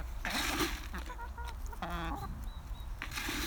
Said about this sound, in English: Lots of energy in today's hens. I think they must have experienced quite a different week without my regular presence in the hen garden.